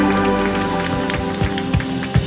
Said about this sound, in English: Let's clap together.